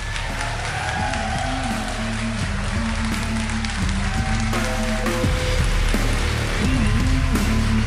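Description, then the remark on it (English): A crowd claps and cheers continuously for about eight seconds as speaker Scott Horton is introduced, a dense, steady wash of applause that swells slightly toward the end, with some low sustained tones underneath. “So ladies and gentlemen, a big, big cheer for the hero himself, Scott Horton.”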